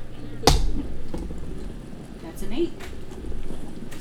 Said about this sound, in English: The arrow just passes, like, right through its head.